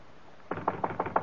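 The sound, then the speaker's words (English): Several sharp knocks on a wooden office door in a quick, even rhythm, clear, after a brief moment of quiet. “Should we knock? Should we go home? We'll knock.”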